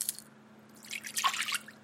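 A man pours cereal into a bowl for his son: a short burst of dry rattling, a faint clatter at the start and then a denser pour lasting under a second.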